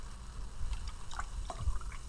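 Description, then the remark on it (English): Liquid pours into a glass, about a third of a glass, in a short, uneven stream, with faint splashy gurgles and a few drip-like blips over a steady low background hum. “So, just going to do about that much each, sort of a third and a bit of a glass.”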